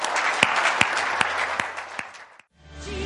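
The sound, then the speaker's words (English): An audience at The Bridge Church claps for Jesus in sustained, dense applause with a few sharper, louder claps standing out, then it cuts off abruptly and a soft background hum follows. “I have one more thing I want to show you, but before I do, can we just give Jesus, it says to clap our hands, all you people in the Bible.”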